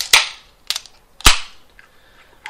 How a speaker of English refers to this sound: But before we do that, the ceremonial... Post-credit crack? Beer crack? This is always good. Cheers.